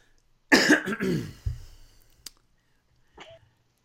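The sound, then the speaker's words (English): A loud cough: a few harsh, rasping bursts in quick succession that trail off into a throaty rumble, followed moments later by a faint, brief throat-clearing sound. “the infamous cough.”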